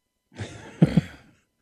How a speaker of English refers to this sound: I mean, if I'd been in Kroger, I would have taken off my mask to do that. Oh, I didn't even realize you sneezed.